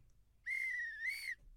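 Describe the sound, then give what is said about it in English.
A referee's full-time whistle gives one shrill, steady blast lasting about a second, loud, with a slight warble toward the end and no voices around it. “So I am going to do the full-time whistle this time”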